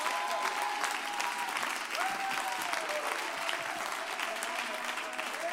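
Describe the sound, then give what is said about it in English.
An audience claps steadily and densely throughout a Holy Ghost worship service, with a few sustained raised voices calling out above the clapping, all at a fairly constant, moderately loud level. “I can't put up with all that tongue talking and all that clapping and all that shouting and all that”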